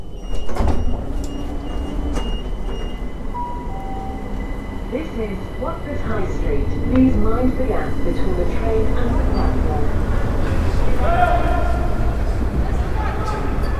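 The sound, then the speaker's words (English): A train idles at the Watford High Street station platform with a steady low rumble, doors sliding and chiming, and a recorded announcement voice naming the station and saying to mind the gap, over the hum of the carriage. “This is Watford High Street. Please mind the gap between the train and the platform.”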